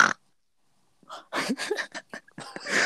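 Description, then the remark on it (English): A person does an impression of Peppa Pig, making a series of short, snorting oink sounds after a brief silence, the grunts coming in quick, uneven bursts. “Well, give me your best impression of Peppa Pig right now.”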